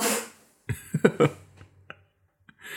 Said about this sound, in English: excuse my sneeze.